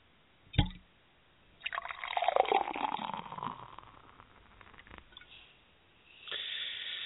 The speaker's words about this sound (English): a little beer pour, letting everybody know that it is indeed the Monday Night Kickoff Show